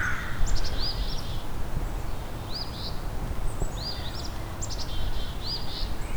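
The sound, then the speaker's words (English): Several crows caw harshly and repeatedly in an agitated chorus, the calls overlapping over a steady outdoor background hiss. “Some very unhappy crows here.”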